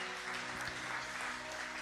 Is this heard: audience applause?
yes